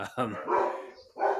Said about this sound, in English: And there's the dogs again.